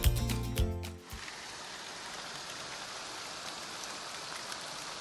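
Steady rain patters on a surface, a dense, even hiss of drops after a brief tonal musical sting fades out in the first second. No voices.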